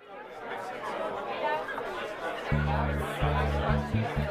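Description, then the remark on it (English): A steady babble of many overlapping voices chattering at an early 1970s London soiree, with no single speaker standing out; about halfway through, low sustained humming tones join in, pausing briefly a few times. “Never mind how you and I got to this early 70s London soiree.”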